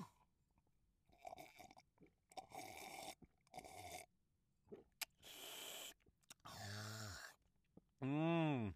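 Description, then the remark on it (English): Loud slurping sips of a New Zealand Sauvignon Blanc wine taken in several short bursts with breathy pauses, ending in a long, drawn-out voiced murmur. “So let's take a sip.”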